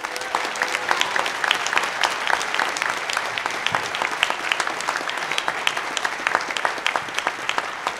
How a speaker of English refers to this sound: Please give a round of applause for our panel.